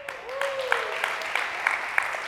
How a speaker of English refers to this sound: And I appreciate you clapping